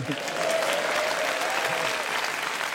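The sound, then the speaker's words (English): A specially invited studio audience at the Empire in Leicester Square, London, bursts into steady applause on cue, a dense, even wash of many hands clapping at a consistent loudness for a few seconds, with no voices standing out. “We're still at the Empire with our specially invited audience who applaud when you point at them.”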